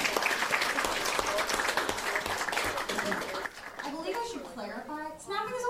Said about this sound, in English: Everybody give a round of applause for that wonderful lesson.